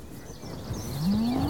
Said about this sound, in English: It's massive, though. It won't hurt you. It's a cow.